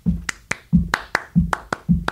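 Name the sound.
rhythmic hand clapping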